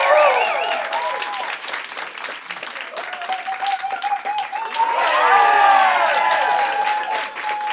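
A comedy club crowd claps steadily and loudly, mixed with whoops, shouts and high whistles, welcoming a comedian from Los Angeles, California, to the stage; the cheering swells to a louder peak toward the end.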